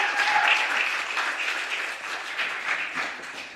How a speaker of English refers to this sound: round of applause for